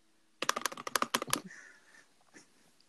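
A quick burst of typing on a computer keyboard, about a dozen crisp clacking keystrokes in a rapid run lasting around a second, followed by quieter faint background noise.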